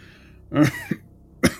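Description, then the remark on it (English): A man's rough, racking cough comes in a few broken bursts: one heavy hack, a short catch, then two more sharp coughs after a brief pause, with no talking. “There's this rolling, racking cough that comes out of him.”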